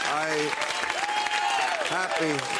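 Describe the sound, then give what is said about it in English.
Loud, steady applause from a happy, maskless live audience fills the whole clip, a dense patter of clapping with voices rising over it at the start and near the end, as if cheering. “Such a happy, maskless crowd we have here.”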